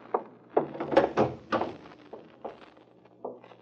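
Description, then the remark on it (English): A kitchen back door's latch, fastened from the inside, is tried and rattled, producing a run of uneven metallic clunks and knocks over a few seconds, with no voices. “Well, latch from the inside.”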